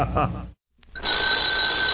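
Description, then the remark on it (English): In a trailer for the film The Babysitter, a brief burst of voice cuts off, then after a short silence a doorbell rings in one steady, sustained, high-pitched buzzing ring that carries on loudly to the end. “Don't answer that doorbell unless you're ready for a lovely young package of trouble.”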